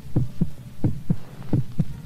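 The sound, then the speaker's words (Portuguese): A steady heartbeat sound in a film's opening credits pulses in low, thudding pairs, three lub-dub beats in about two seconds, muffled and deep with no voices over it. “Então, nesse momento dos créditos iniciais, a gente tem, né, uma iluminação um pouco ainda na penumbra, com alguns elementos de sombra, e esse som do coração.”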